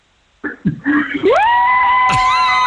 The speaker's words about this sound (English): I guarantee you there's no food unless I get a real humdinger of a scream.